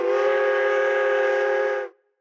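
A loud, steady train whistle blasts for nearly two seconds, a single sustained chord-like tone with a breathy edge, then cuts off abruptly into silence.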